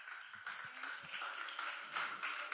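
An audience applauds steadily as a speaker is welcomed up, a dense wash of many hands clapping at once, holding even in loudness from start to finish with no talk over it.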